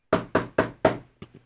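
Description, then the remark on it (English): Four firm, evenly spaced knocks on a door, loud, followed by two softer, quicker taps. No voices are heard. “I think he's going to get the knock soon.”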